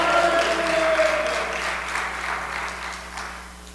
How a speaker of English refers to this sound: Woo! Clap your hands and say, hallelujah!